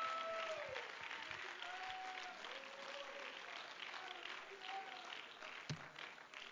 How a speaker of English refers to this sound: Oh, somebody clap their hands and let's give him some praise.